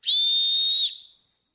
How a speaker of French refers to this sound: quand l'arbitre siffle